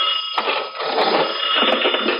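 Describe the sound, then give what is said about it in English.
A telephone bell rings loudly in a store, a harsh, continuous metallic jangle lasting about two seconds with no voices over it. “I'm expecting a call. I'll answer. Go on, then. I answer before they hang up.”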